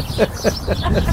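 birds chirping

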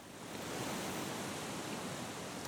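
wind blowing through trees

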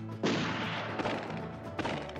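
gunshots fired

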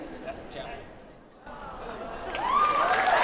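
audience applause

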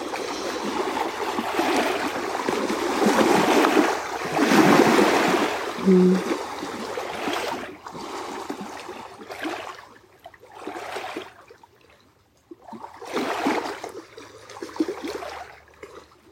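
lake waves lapping

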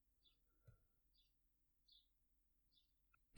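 birds chirping

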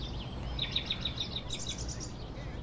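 birds chirping

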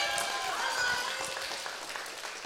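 audience clapping

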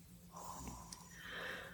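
snoring

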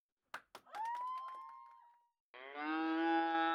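cow mooing

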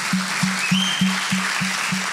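audience applause

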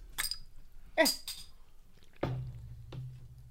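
carbonated drink fizzing

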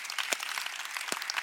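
light polite golf clap

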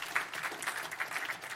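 audience hand clapping

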